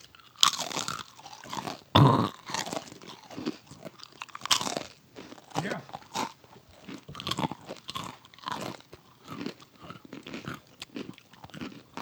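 Loud crunchy chewing fills the whole stretch, a steady rhythm of crisp bites and munching with short pauses between, and no talking over it.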